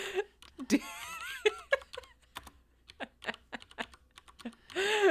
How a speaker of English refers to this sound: which is the camera crew dragging some unconscious bodies around while in the foreground, some lady is clack, clack, clacking away on the keyboard. Yeah, she was a clacky bitch.